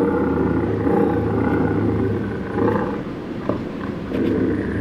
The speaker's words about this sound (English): From the cave to the southern side of Hooker Mountain, or the shore of Peacham Pond, oh yes, there's bobcat out there, and will be, long after we ourselves are long gone and forgotten.